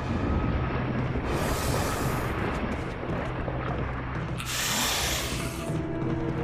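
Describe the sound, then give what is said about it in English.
Loud, dense percussive boss-fight music from Resident Evil 1, for the fight against a snake, with pounding low drums throughout and two sustained bursts of bright, crashing cymbal-like noise. No voices. “It sounds kind of like a video game from 2002.”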